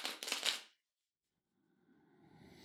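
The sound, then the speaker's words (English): Tarot cards being shuffled: a quick crisp riffle of flicking cards, a brief silence, then a softer, rising shuffle beginning again, with no one speaking. “Get situated in your heart and connect to the sound of the cards by listening in to the sound of them being shuffled.”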